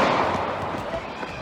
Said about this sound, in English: Oh, well, here's everybody running from the gunshots. Boom, boom, boom.